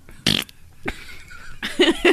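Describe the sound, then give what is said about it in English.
A short, raspy fart sounds, followed by a brief sputter and then a longer, buzzy blat. No talking is heard. “Rosebud, and then you fart?”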